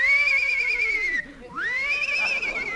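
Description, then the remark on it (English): A horse named Citation whinnies loudly as it is mounted, a high, quavering neigh that dips and breaks off briefly midway, then rises again and trembles on for a couple more seconds. “Easy getting up on that horse.”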